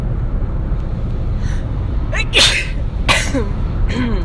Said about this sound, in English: I'm gonna sneeze. Oh, come on.